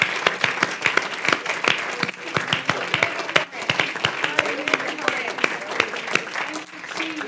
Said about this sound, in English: So we must stay connected to one another. Come on, let's clap our hands together. Thank you for participating in this.